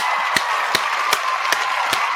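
Applause in the form of five slow, evenly spaced claps, each a sharp crack, ringing out over a steady background hiss with no one talking.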